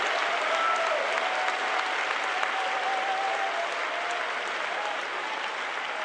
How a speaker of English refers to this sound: Somebody clap your hands to the Holy Ghost.